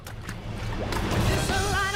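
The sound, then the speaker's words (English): A sudden splash of water as someone splashes a person, a broad sloshing whoosh with a couple of sharper bursts, followed by continued churning water noise. No clear speech is heard. “Did you just splash me?”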